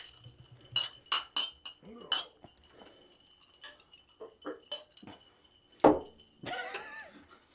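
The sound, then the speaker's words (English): Several glasses clink together in a toast, a quick flurry of bright, ringing taps, with a few scattered clinks and murmured voices following, then a louder knock and rustle near the end. “if everyone doesn't mind, raise a glass.”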